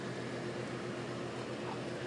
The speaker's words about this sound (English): Ah, the drones of the air conditioners of the neighbors.